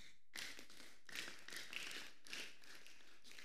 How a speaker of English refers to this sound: Are you clapping for Jesus?